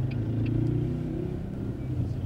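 A car engine rumbles loudly in South Tehran, a steady low drone that swells slightly in pitch partway through as if revving, with no voices.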